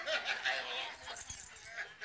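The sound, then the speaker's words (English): A ring of keys jangles and clinks steadily for a couple of seconds, a bright metallic rattling that is fairly quiet. “I mean, I was looking for the big ring with all of these keys.”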